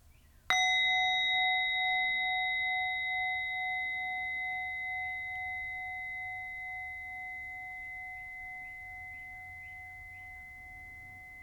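A single meditation bell is struck once to end a meditation and rings out with clear, sustained metallic tones that slowly decay over about ten seconds. Faint birdsong chirps in the background, and nobody speaks.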